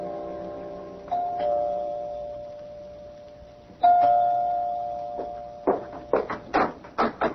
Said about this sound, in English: You can go to his apartment. You can ring the doorbell. One thing about doorbells, they don't give off busy signals.